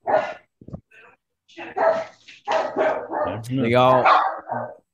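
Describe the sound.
Dogs bark in a cluster of sharp bursts, some yelping higher than others, mixed in with people talking.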